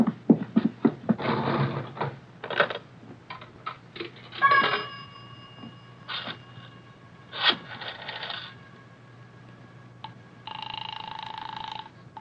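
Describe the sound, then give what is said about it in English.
Someone uses a pay phone in a booth to call the police: clunky handling noises, two coins dropping with bright metallic chimes, then a steady telephone tone near the end. No one speaks. “Miss, I have to make a phone call.”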